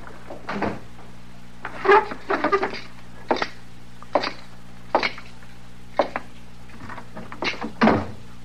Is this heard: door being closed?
yes